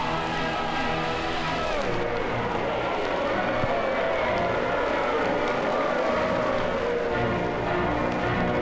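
A large crowd of people waiting in the city cheers and shouts continuously for the daring engineer of the Cannonball Special train, a dense, loud wall of many voices that holds steady for several seconds without a break.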